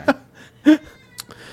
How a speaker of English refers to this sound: Is that the cat? Turk, I hear you on the camera. You hear that?